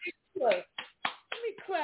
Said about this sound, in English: Let me clap for you.